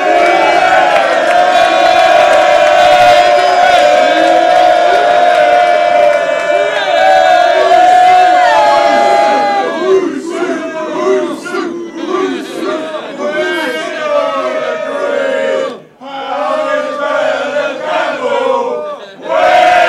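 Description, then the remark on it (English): A large crowd roars, cheers and applauds loudly for Lloyd Owusu and Darren Powell at the end of an evening live event, a sustained wall of shouting voices that breaks into choppier bursts of yells and clapping, dipping briefly before swelling again. “Round of applause for our boys here, Lloyd Owusu and Darren Powell.”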